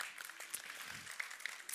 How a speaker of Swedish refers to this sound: Jag tänkte, vi tar en ny applåd här för den här panelen.